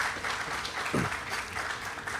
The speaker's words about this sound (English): And certainly my good friend, Mr. Tim McCosker. I don't see him, but let's give Tim a round of applause.